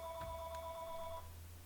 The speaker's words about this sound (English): Sorry, I'm gonna mute myself for a second while I get rid of this phone call. No worries. Telemarketers, I swear.